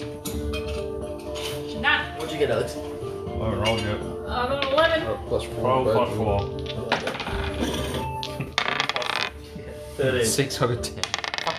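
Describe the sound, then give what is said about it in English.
Several dice clatter and rattle across a hard tabletop in quick, clicking bursts as players each roll for a perception check, with overlapping background voices murmuring throughout. “I was just about to say, can everyone roll perception, please?”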